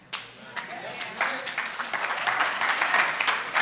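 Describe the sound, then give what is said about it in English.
Light, polite applause from an audience: scattered soft claps that build into a steady patter of many hands, staying fairly subdued rather than loud or enthusiastic. “After like a really high quality golf clap, let's try something different.”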